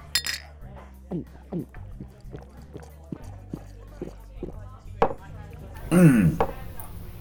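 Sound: drinking glasses clinking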